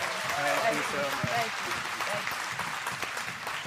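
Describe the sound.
An audience at Family Worship Center applauds steadily for two guests, dense clapping that holds at a fairly even level throughout, with voices and cheers rising over it in the first half.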